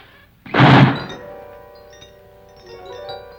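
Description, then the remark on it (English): A heavy solid steel door slams shut with a single loud, booming thud, followed by a faint rattling and a low lingering resonance as the sound dies away. “Who closed the door?”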